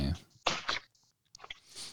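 Wet chewing of a protein ball right on the microphone: a few loud, crunchy munching bursts separated by short pauses, with soft mouth clicks as the food is worked between bites.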